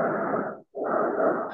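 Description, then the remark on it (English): Heavy breathing right up against a microphone during an online video session: a long noisy inhale, a brief silent pause, then another rough breath, loud and airy with no talking. “I can hear somebody breathing.”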